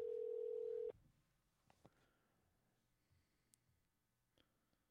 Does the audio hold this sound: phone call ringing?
yes